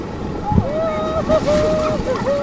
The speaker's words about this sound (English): Class 4 rapids are pretty hardcore. So this day is not going to be easy. Within a few minutes, the water starts to churn.